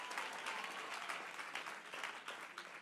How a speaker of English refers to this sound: Would you clap your hands if you believe that?